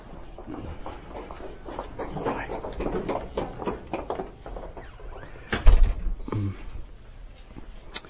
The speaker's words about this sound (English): I'm going to get the doors just so.